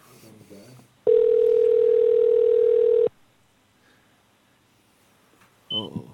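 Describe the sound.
A single loud, steady ringback tone sounds for about two seconds as a phone call is placed, with brief speech just before it and a voice starting up again afterward.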